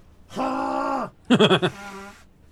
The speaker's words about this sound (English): Sorry, I gotta blow my nose.